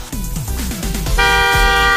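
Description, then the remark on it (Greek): A boat horn sounds a loud, steady, sustained blast that starts about halfway through, preceded by a rhythmic low chugging, as the boat passes under a low bridge. No one speaks. “Μπορούμε να κορνάρουμε.”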